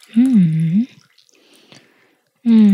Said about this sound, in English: Hold on, I'm going to pour some more tea in my tea bowl.